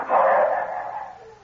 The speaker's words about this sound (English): You hear that, Duke? The dogs have got the shadow. It's lucky for us he left his hanging with the kids so the hounds could get the scent, ain't it, huh?